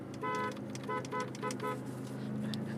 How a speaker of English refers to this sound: I just was honking at my wife, running with my pit bull.